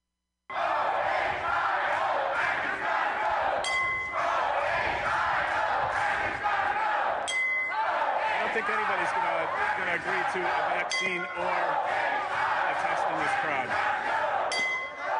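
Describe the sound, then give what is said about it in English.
A large crowd of protesters outside the State House shouts and yells steadily, loud and dense. A sharp bright burst cuts through every few seconds in a regular rhythm, as though a chant repeats. “Watching on TV, the protesters' message wasn't clear, but you may have been able to hear something going on.”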